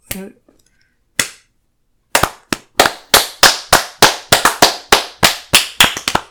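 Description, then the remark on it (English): Loud hand claps from the hosts applauding the film Birdemic: Shock and Terror: a short vocal sound, one isolated clap, then a pause before a steady run of sharp claps at a brisk, fairly even pace until the end. “Wait, the clapping died down.”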